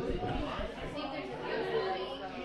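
crowd chatter

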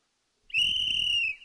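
whistle

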